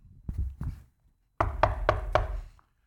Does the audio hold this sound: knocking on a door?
yes